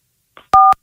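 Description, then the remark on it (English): A single loud touchtone phone keypad beep, a steady dual-pitched tone lasting about a fifth of a second, preceded by a faint soft click, with no talking. “If you're speaking from a touchtone phone, press 1 now.”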